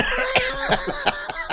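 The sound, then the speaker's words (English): A short run of coughs, about five sharp bursts in quick irregular succession, fairly loud over a steady low background hum. “Actually, it was just a cough and a sip of water to follow up the cough.”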